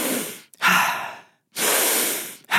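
Deep, forceful breaths drawn in and let out in quick succession during Wim Hof breathwork, loud, each a rushing airy whoosh separated by brief pauses, with no talking.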